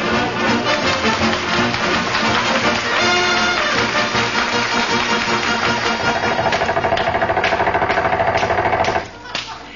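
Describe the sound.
Air hammers chatter loudly and continuously in a rapid, rattling pounding as they chop hardened pavement loose from around a man's feet, with voices faintly mixed underneath, until the hammering cuts off abruptly near the end.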